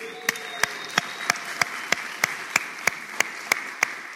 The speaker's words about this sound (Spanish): ¿aquí estás? Acá estamos, un aplauso.